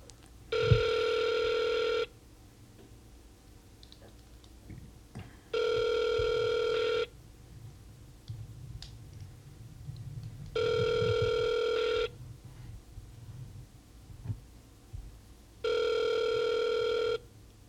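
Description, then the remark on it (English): A telephone ringing on the line during a call to a bar in Glen Rose, Texas: four steady, buzzy ring tones, each about a second and a half long, separated by gaps of several seconds, over a faint low background hum. “Man, by the time I clicked dial, I forgot the type of place I called.”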